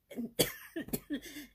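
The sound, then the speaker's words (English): A fit of several harsh, raspy coughs after inhaling wrong, in quick succession, the sharpest burst early on, followed by a couple of shorter, throatier coughs. No one is talking. “Inhaled wrong, excuse me.”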